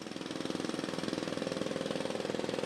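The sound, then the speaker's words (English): A jackhammer pounds away in a rapid, steady rhythm of sharp percussive hits, loud and continuous with a rough mechanical rattle, as crews in Santa Clarita, California repair a road torn away by rushing water and a ruptured gas line. “Yeah, Frank, and no doubt you hear the jackhammer going just off camera here.”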